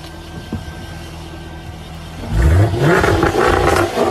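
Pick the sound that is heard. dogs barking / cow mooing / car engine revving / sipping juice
car engine revving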